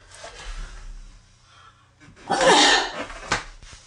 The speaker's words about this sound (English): I'm going to sneeze.